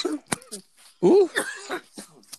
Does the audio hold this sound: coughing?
yes